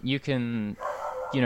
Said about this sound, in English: You can hear my dog in the background of this podcast.